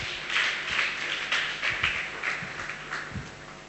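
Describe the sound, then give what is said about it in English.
An audience at a church service clapping hands for Jesus in steady, dense applause, with bursts of louder claps rising and falling over about four seconds, moderately loud and no voices heard. “Check, clap your hand for Jesus.”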